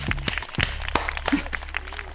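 A short burst of applause: scattered, irregular hand claps from a small group, crackling at a fairly steady moderate level for about two seconds with no talking.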